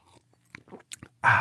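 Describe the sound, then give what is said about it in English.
Someone takes a drink of water: a few soft, wet mouth clicks and a gulp, then a sudden loud, rough rush of noise to the end. No one speaks. “Yeah, and it's really important to, excuse me, it's really important to, I got a frog in my throat and drink some water here.”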